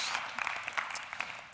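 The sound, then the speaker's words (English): A round of applause from a group for the reader of a long Pentecost reading, with dense overlapping claps forming a steady crackling wash, moderately loud with small bursts, and no voices. “Round of applause for Chloe for reading the list that no one else wants to read.”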